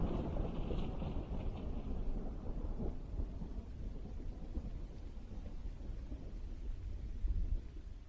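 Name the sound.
distant rumbling thunder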